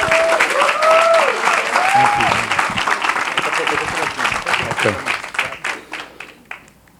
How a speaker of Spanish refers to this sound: Así que quiero pedirle que reciba con un fuerte aplauso